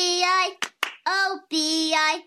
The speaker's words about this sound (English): Added extra clap. Not college material. Yes. Getting an extra clap in kindergarten means you're never going to college.